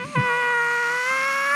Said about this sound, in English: But suddenly he hears something, and it is a loud electric scream.